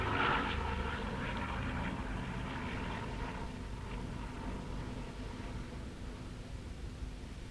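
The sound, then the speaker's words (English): A propeller aeroplane from Ronaldsway, just taking off, drones steadily overhead at the start of a 250cc mass-start race at Castletown, its broad engine rumble loud and continuous, fading only slightly over several seconds with no voices present. “An aeroplane from Ronald's Way just taking off as we are waiting with seconds to go for the start of this 250cc race.”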